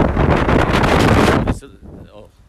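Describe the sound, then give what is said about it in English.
Loud, roaring gusts of strong wind on a hot day of about 41 degrees batter the microphone by a hangar for about a second and a half, then drop away abruptly, leaving quieter background with faint voice-like sounds. “It's very windy.”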